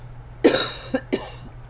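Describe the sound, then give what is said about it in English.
A fairly loud burst of coughing: one strong cough followed by two shorter ones in quick succession, with no talking around them. “I'm getting ready to cough right now.”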